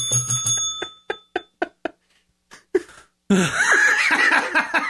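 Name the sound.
bell ringing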